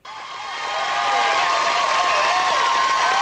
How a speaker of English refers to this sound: Cheering.